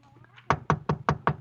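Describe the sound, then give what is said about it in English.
Six quick, evenly spaced, sharp knocks on the door of apartment 1B, rapping in a steady rhythm after a brief moment of faint low hum. “I got to apartment 1B. I knocked.”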